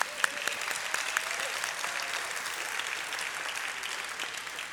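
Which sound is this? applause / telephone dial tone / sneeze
applause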